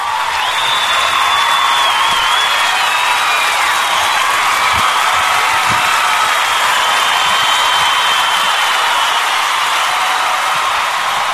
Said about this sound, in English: Yay! Where the hell is my applause? I need my applause.